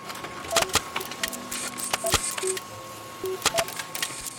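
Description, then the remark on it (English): A printer printing out a story runs with a steady mechanical hum, broken by irregular sharp clicks and clacks and short whirring feeds as pages move through. No one speaks. “I'm printing it out right now.”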